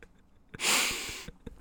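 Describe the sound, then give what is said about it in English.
One long, forceful sniff of a Sharpie marker, someone inhaling hard through the nose at the marker tip, hissy and breathy for under a second, with only faint rustles before and after. “These guys are sniffing Sharpies.”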